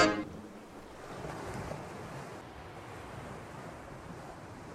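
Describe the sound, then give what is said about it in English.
Ocean waves wash in a steady, broad hiss of surf with a faint windy rumble, holding at a moderate level after a brief clipped note at the very start. “I wasn't quite sure what to do about those voice crack waves fading out there.”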